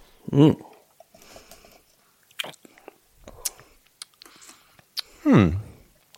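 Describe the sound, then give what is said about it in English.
Someone sips bubbling ginger beer from a glass with small slurps, wet mouth clicks and a swallow, bracketed by two drawn-out appreciative vocal hums at the start and end. “So, I think we better do the honours of taking a sip.”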